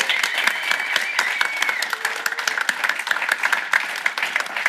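Sustained audience applause for the event organizer at an 11FS event at Level 39, a dense, steady patter of many hands clapping at once at a fairly loud, even level, with no one speaking over it.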